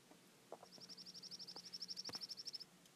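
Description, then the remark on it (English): A bird outdoors at the Ellis Trailhead in the Sandia Mountains, Cibola National Forest, outside Albuquerque, New Mexico, sings a rapid, even trill of high chirps lasting about two seconds, fairly clear against a low background hum and a few soft knocks, with no one talking. “And you may hear birds chirping in the background.”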